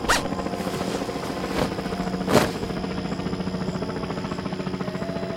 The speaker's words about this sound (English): There's that helicopter again.